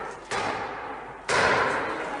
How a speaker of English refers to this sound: It all followed this. Battering rams used on the doors of the U.S. Capitol.